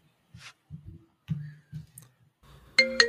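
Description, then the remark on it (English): A loud, bright electronic phone ringtone bursts in abruptly near the end, following a series of soft, low muffled bumps and rustles. “Oh, is the fucking phone ringing again?”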